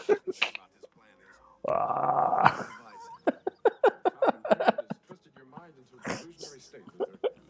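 A dog whines in a drawn-out, strained cry, then lets out a rapid string of sharp yips with brief pauses between bursts, fairly loud and excited.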